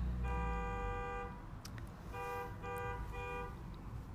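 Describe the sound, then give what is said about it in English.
A car horn honks insistently: one long blast, a brief pause, then three shorter honks in quick succession, loud over a low street rumble. “pissed me off with all his honking.”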